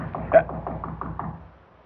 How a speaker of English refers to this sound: What was that? Someone's at the door. No, it can't be. No. No one's supposed to come here till the grocery boy delivers next Wednesday. No one's ever supposed to come here at night.